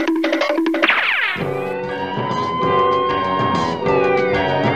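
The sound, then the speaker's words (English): Loud wailing emergency sirens sweep up and down in pitch, layered over a sustained, droning tone that fills the rest of the short clip. No one speaks. “Oh, you hear those sirens? Somebody must be down.”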